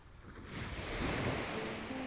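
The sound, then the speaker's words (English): Ocean waves wash onto the shore in a continuous, rushing roar that swells louder after the first half second, with a steady hiss of surf and a breath of wind, no voices. “The air from the waves also delivers negative ions, or atoms, with a net negative electrical charge.”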